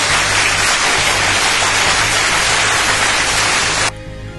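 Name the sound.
applause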